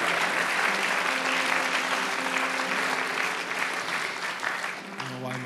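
An audience gives a round of applause at the speaker's request, a dense wash of clapping that fills the room and holds for several seconds before easing slightly near the end.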